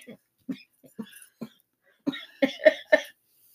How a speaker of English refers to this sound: Do you have water? I'm coughing.